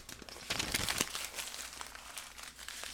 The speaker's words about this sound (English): Like crumbling paper. Like that, and then there was some like... Like scratching noise? Like crumbling paper and a little bit.